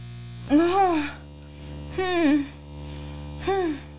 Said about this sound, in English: Can you hear the buzz? Oh, yeah. We can hear it all.